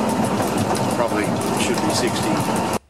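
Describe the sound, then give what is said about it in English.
A train rumbles and rattles steadily along twisted, rough rails on the Sydney to Melbourne line at 80 kilometres an hour, loud, as if heard from on board, with faint indistinct voices underneath before the sound cuts off abruptly. “We're now doing 80 kilometres an hour. Look at that twist there. It's really severe.”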